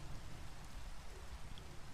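Steady rain falls in an even, continuous hiss with dense patter across the whole clip, no voices or other sounds standing out.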